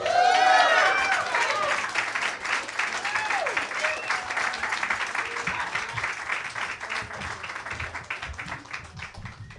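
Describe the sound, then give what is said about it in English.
A crowd at an open mic reading applauds for the 50th anniversary of the Stonewall Uprising, with dense steady clapping and a few cheers and whoops rising over it at the start, the clapping continuing loud before slowly tapering off. “Let's hear it for the 50th anniversary of the Stonewall Uprising.”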